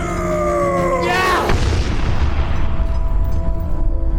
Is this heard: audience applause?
no